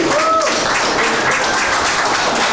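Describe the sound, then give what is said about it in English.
A round of applause from a group for volunteers who cleared out the first fishing access on the Rainy River: dense overlapping clapping that stays steady and fairly loud for the whole stretch, with a brief faint voice near the start. “to these volunteers that went and did it, we should all give these people a round of applause for opening up that first access for us.”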